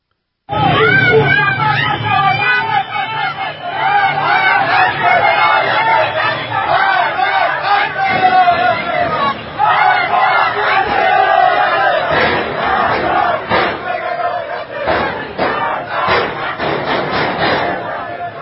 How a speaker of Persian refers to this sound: بله بعد تهران پارس، من دیگه صداهاشو فقط پخش میکنم، مسدود کردن خیابانها تهران پارس.